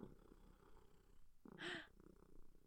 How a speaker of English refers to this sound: Buddy, I wish you would purr for people. You're no pepper, though. Do it. Purr for us, buddy. Buddy. Purr. What if I move the microphone close to Buddy's?